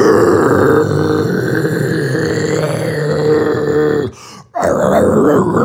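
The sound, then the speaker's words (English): A loud, guttural death metal scream, rough and low-pitched, held for about four seconds before a brief break, then starting up again with the same harsh, growling tone. “I can do a good death metal scream.”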